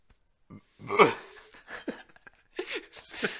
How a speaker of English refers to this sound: I just pretty much burped myself. Fatting myself like a baby. Like a baby. Probably a little vom came up.